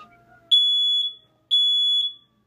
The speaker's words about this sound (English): It's my fucking smoke alarm.